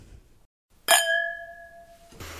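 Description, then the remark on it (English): A single bright clink of wine glasses touching, ringing out with a clear sustained chime that fades over about a second before a soft rustle of background noise returns. “With all that said, here's the clink.”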